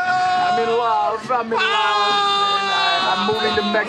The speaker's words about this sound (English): Walking and yelling.